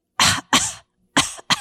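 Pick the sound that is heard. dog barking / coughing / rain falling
coughing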